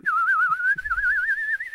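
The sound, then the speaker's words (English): A person whistles a continuous, warbling bird-like song, the pitch wavering rapidly up and down in a steady trill for a couple of seconds, clear with no talking. “And then the bird flapped his wings and sang a beautiful song, pleased with himself that he had made such a fine dinner of the two flies.”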